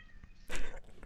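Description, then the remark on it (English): A single short meow from a female cat that is getting into things, moderately loud, rising briefly out of a quiet background before fading. “All right, the cat was getting into stuff.”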